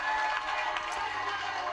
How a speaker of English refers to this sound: I have to say, from the first time I saw this video, even the first 30 seconds of cheering sounded kind of weird. Are those boos that are in the background? No. At that point, you're hearing cheering and clapping.